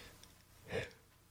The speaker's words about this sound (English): True enough, fair enough, sorry. Very, very unpro of me to be yawning at this point. It gives you an idea as to where I am at this.